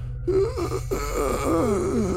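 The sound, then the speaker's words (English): A raspy, croaking voice lets out a few wavering, strained moans, rising and falling in pitch like a weak call for help, with a steady low hum underneath. “So as you kind of walk, you know, through this blank room, up to the door, you notice it's open just a crack, and before you can even get up to the room, you hear these gravelly croaks for help.”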